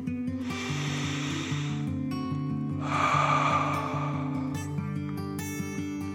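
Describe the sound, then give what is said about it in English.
A slow, deep breath drawn in and then let out, two long airy whooshes over a soft, steady musical background. “The cars began to relax deeply and took a second deep dragon breath in and out.”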